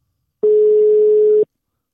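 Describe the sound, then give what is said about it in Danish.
A single steady telephone ringing tone, an outgoing call's ringback, sounds for about one second at a constant pitch, clear and fairly loud, with nothing else heard before or after. “Der er noget, der ringer.”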